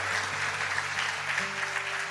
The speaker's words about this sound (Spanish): Hay unos ministros aquí que ven varón, y la iglesia va a darle un aplauso a Dios por ellos.